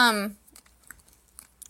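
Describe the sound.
A brief voiced sound gives way to soft chewing: scattered wet mouth clicks and smacks, irregular and fairly quiet, with short pauses between them.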